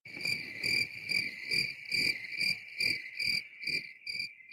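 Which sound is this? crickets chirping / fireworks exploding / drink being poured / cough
crickets chirping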